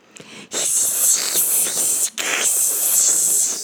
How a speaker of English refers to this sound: A hissing sound made him look up, and there, staring down at him from a low branch, was a mama possum with 6 possum babies riding on her back. They were, all 7 of them, hissing at him.